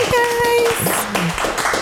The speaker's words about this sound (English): Let's clap her up.